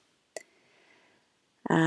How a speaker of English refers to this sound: I have Henry the Pug in the background snoring next to me as usual, my little buddy.